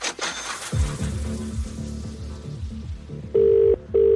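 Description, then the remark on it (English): An outgoing call connects and the ringback tone starts, two steady buzzing bursts close together near the end, after a few seconds of busy clattering and sweeping tones. “Five rings and then we have to put the phone down and all the money goes back into the cash register.”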